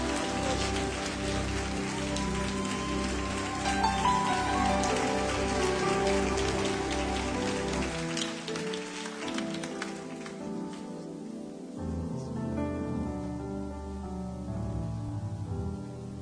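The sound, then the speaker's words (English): A church audience claps steadily in a dense, continuous wash of applause, welcoming a guest pastor from Durham, North Carolina, to preach. Sustained organ or keyboard chords play underneath, and the clapping thins slightly toward the end. “And let's receive him with a warm hand clap of appreciation.”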